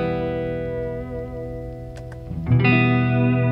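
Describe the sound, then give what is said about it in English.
Sustained electric guitar chords played through an El Capistan tape echo pedal used as reverb wash together in a lush, echoing haze, with a brighter new chord swelling in near the end and ringing out alongside the fading earlier notes. No voices. “I think basically for me, it's just like a nice reverb.”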